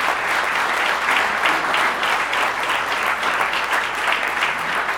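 A crowd applauds steadily for about five seconds, a dense, even patter of many hands clapping at once, loud and sustained without dropping off, with no one speaking over it.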